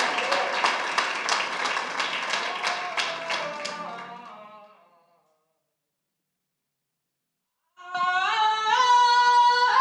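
A group claps in a steady, even rhythm over a sustained tonal backdrop, the claps fading out after about five seconds; after a short silence, loud sustained harmonic tones start.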